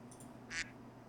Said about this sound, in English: Yeah, we'll use the quack sound.